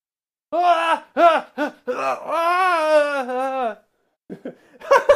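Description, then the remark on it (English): A voice imitates the orgasm sounds of a puppet named Eugene with a few short, choppy yelps, then a long wavering high-pitched moan that slides downward before trailing off into a couple of breathy bursts. “what does Eugene sound like when he comes?”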